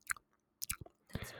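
Chewing into the microphone for an ASMR recording of mouth noises: a few wet, crunchy bites in quick bursts separated by short quiet gaps, ending in a denser stretch of mouth noise. No talking.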